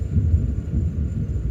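A steady, deep rumble of thunder rolls on without a break, low and heavy, with no voices over it.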